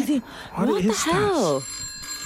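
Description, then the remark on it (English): The bell of a dusty, antique retro telephone rings as a short burst, partly overlapped by wordless, sliding vocal sounds, then its thin metallic tone lingers quietly for a moment after the voice stops. “A very retro phone of that as well.”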